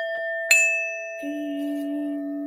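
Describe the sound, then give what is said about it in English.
A small hand bell rings with a sharp strike, then a clear metallic tone lingers and overlaps with a lower ringing note, moderately loud, with no one speaking. “Let me ding my bell again. I'm going to ding my bell.”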